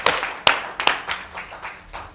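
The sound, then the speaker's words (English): An audience at a Christian service claps together after a prayer in a loose burst of overlapping hand claps, a few sharper claps standing out near the start before the clapping thins and fades. “Clap your hands, and you may be seated.”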